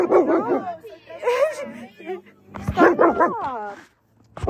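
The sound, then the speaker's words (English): A female puppy barks in several sharp, high yips and whimpers in quick irregular bursts, while her owner talks over and between the barks, telling her to stop barking and sit down. “No barkies. No barkies. No barkies. Sit. Sit down.”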